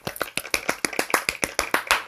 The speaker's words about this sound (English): Hold on. Golf clap.